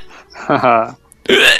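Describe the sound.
Two short hiccup sounds, a voiced gulping yelp followed moments later by a sharper, breathier one, with a brief pause between them.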